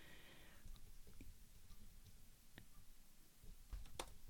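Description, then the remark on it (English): Quiet keyboard typing as someone types a phrase into a list: a handful of soft, irregular key clicks with uneven gaps, ending in a quick cluster of taps, against a low background hum with no voices. “I'm typing it.”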